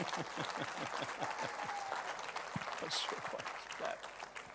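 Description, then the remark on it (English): An audience at an Easter service claps for the Lord steadily for several seconds, a dense, even patter of many hands at moderate loudness with faint crowd murmur underneath. “You can give the Lord a bit of a clap if you want.”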